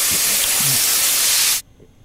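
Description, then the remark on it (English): A loud, steady hiss of water spraying under pressure from a kitchen leak runs for about a second and a half, then cuts off abruptly, leaving near silence. “There's a lot of water.”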